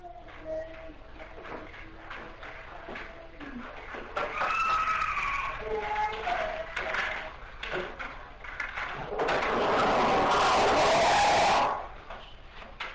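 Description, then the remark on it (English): A loud, harsh scream erupts near the end and holds for about two seconds, rising out of a noisy, crackling recording scattered with faint warbling tones and clicks. “These people claim everyone there didn't hear this scream, and it's just creepy to me that they would pick this up.”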